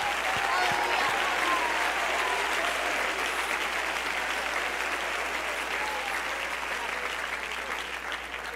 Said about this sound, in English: If you're glad that you know the author and you know him by name, why don't we give him a hand clap of praise?